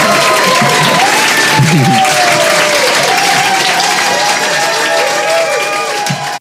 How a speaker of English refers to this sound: We just wanted you to hear that applause for you. Yeah, I know. I like that. Do you remember what it's like? That felt good. I like that.